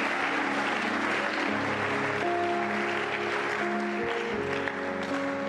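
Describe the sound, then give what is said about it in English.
A church audience claps for Jesus steadily and densely for several seconds, a loud continuous wash of hands, while sustained keyboard or organ notes shift underneath. No one speaks. “Come on, clap for Jesus.”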